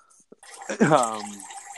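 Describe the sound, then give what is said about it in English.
A man pours a vodka drink into a glass, splashing steadily with a rising, ringing pitch as the glass fills, preceded by a couple of faint clinks. “pours himself a nice... Wait, did you hear that? Drink. Yeah, I'm making a vodka drink”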